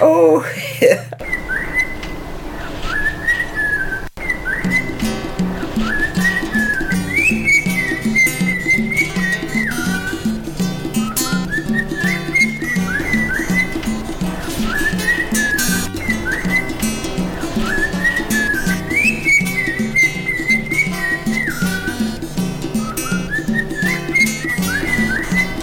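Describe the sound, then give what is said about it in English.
A pet cockatiel named Tim whistles a repeating melody over a steady, fully produced music track with a driving beat. The whistled phrases loop several times, sitting clearly above the backing throughout. “I noticed on SoundCloud you put out a song based on your cockatiel.”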